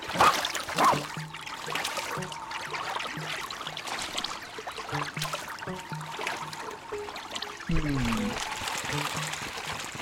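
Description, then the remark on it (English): Water splashes and sloshes steadily throughout, like something wading and paddling through a pond, with a few louder surges and faint murmuring tones underneath. “How much do we need to splash around in the pond?”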